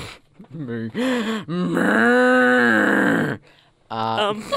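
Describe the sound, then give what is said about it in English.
A person imitates a cow mooing: three loud, low, drawn-out vocal moos with wavering pitch, the middle one held for about two seconds, with no other talk. “There have been some videos out on Facebook from cow noises. Moo.”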